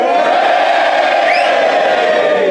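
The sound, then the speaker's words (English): A studio audience cheers loudly and steadily to vote in a poll on whether someone acted amorally, a dense roar of many voices with whoops and yells rising above it, sustained throughout without pause. “If you think he acted amorally, I did. Cheer now.”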